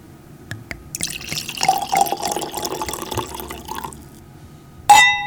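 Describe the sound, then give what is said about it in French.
Château de Fleury 2019, a Gamay wine from Beaujolais, glugs and splashes steadily into a glass for a few seconds, followed after a short pause by a single bright clink of glass. No one speaks. “On va partager le verre de l'amitié.”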